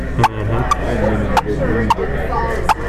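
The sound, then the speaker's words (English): A handheld turkey call gives five sharp clucking yelps at uneven intervals, each brief and bright, with a low murmur of voices and background rumble underneath. “But I mean, you know, to a dumb turkey, it don't matter, I don't suppose. But the more you sound like a turkey, the better you're going to look.”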